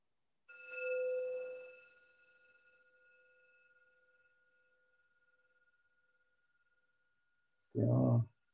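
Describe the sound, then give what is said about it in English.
A single bell is struck to start a concentration exercise and rings with a clear, bright tone, its shimmering overtones slowly fading over several seconds into near silence before a brief burst of voice at the end. “And so as I ring the bell, what I want you to do is just start by focusing on the sound of it until you can't hear it anymore.”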